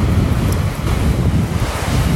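Ocean waves wash onto the shore in a loud, continuous roar, with a heavy low rumble and buffeting wind. No one speaks.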